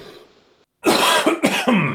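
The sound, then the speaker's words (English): A loud burst of harsh coughing, three or four rough hacks in quick succession after a moment of near silence, with a faint low murmur at the very start. “Excuse me if I keep taking a sip of water here so I don't cough. Still going to cough.”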